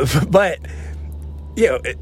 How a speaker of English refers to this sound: And there's a truck behind me right now. I'm sorry if you hear that, and that's distracting, but it's distracting me right now.